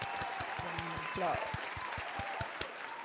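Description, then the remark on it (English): An audience breaks into steady applause, a dense wash of many hands clapping at a fairly even loudness, with a few cheering voices rising through it. “Can I do an applause for that too?”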